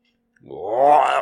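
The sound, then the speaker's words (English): A single drawn-out yawn, fairly loud, voiced with a groaning tone that swells and rises in pitch before cutting off, after a brief silence. “I'm going to bring that up every time I yawn now.”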